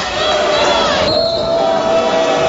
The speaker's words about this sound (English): You can hear the reaction of the crowd. He got bumped as he drove down the lane and took an extra step before he then went up for the shot, and they gave it to him.